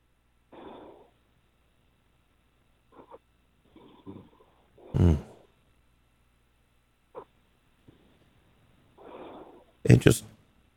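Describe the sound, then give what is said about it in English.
A male caller who has stayed on the line snores over a muffled phone line, with slow, uneven breaths and a few louder, rasping snorts spaced several seconds apart, separated by quiet gaps. “I recognize the snoring.”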